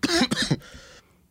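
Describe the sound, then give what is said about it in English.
Two harsh, rapid coughs, followed by a short breathy rasp as the coughing trails off, with no talking. “This motherfucker's dying. Yo, I don't know what's wrong. Let me pop this cough drop now.”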